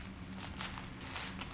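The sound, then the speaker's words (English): Scissors crunch through the crust of a baked, pizza-like dish topped with dill and capers in a series of short, crisp snips, roughly evenly spaced and fairly quiet over a steady low background hum. “But and now we're going to cut it with some scissors”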